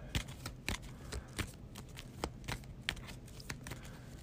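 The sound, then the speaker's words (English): A deck of cards being shuffled, with a quick series of crisp snapping riffles and flicks coming in irregular bursts against a quiet background, with no one talking. “I must either choose one, test 3 to attempt to jump the gap, or shuffle this in the expiration. I'm going to shuffle it because if I fail, bad things happen.”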